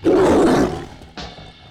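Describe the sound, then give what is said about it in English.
A tiger in a hotel villa bathroom at Caesar's lets out one loud, deep, rasping roar that fades after about half a second, followed by a shorter, quieter growl. No one speaks. “There's a jungle cat in the bathroom!”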